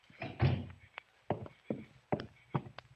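A door is pushed shut with a heavy thud, followed by several more wooden bumps and knocks at uneven intervals as it settles against the frame.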